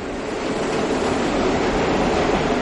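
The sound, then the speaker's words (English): A loud, steady roar of four subway trains pulling into the 79th Street and Broadway station in Manhattan at the same time, dense rumbling and screeching noise, with no voices audible. “I was at the 79th Street and Broadway stop by happenstance. All four trains came in at the same time, and the noise was really mind-boggling.”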